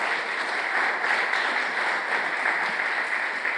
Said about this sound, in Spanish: ¿Por qué no le damos un aplauso a todos ustedes, principalmente a Dios?